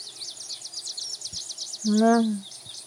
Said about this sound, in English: Birds are up, sun is up.